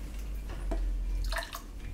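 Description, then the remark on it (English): The last bit of beer left in a can glugs and splashes out in a few short bursts, with a steady low rumble in the background and no one talking. “Left a little in here. Oh, pour up.”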